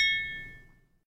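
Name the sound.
glasses clinking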